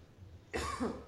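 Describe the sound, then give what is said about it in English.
A single harsh cough from a person with flu now downgraded to a cold bursts out abruptly after a short stretch of quiet room noise, fairly loud, with a rough, throaty tail. “As I continue to cough from my flu slash now downgraded to cold.”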